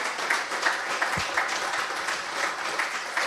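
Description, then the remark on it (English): A crowd applauds steadily, many hands clapping at once in a dense, continuous patter that holds at an even loudness throughout, with no voices rising above it. “actually, can I just clap? Because I think it's worth a clap.”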